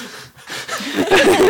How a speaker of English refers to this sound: There's like some heavy breathing going on.